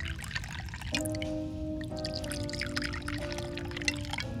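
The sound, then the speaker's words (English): Wine pours steadily into a glass, a bright trickling stream with rising ringing tones as it fills, continuous for a few seconds, no talking. “Wine? Please.”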